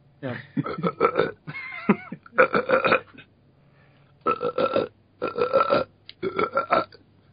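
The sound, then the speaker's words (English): A series of loud burps, about six drawn-out belches in a row separated by short pauses, with no talking around them. “He's sitting there going da da da dum, you know, drinking his beer, maybe burping it out.”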